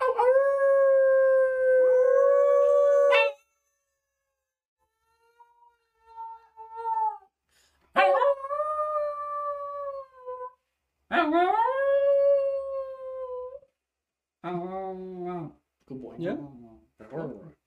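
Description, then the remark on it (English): A dog howls on cue in several long, wavering bouts separated by short pauses, the pitch sliding up and then trailing down, ending in a run of shorter, choppier yelping howls. “It looks like he's ready for an awoo, ready?”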